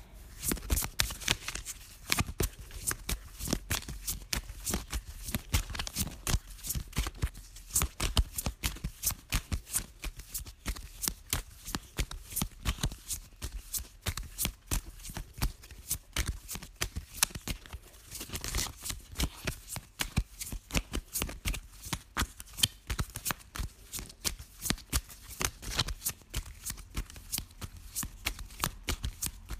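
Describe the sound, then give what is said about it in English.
Card shuffling runs steadily for about half a minute, a dense stream of crisp riffling snaps and soft flutters with brief pauses between bursts, no voices. “So, nevertheless, let's begin shuffling.”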